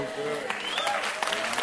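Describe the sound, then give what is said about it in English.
An audience claps steadily in a dense, continuous patter for under two seconds, with several voices calling out and wavering over the applause. “Look at your clapping.”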